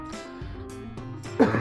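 A person gives a run of short, rough coughs mixed with throat-clearing, several hoarse bursts in quick succession with a slightly louder one near the end.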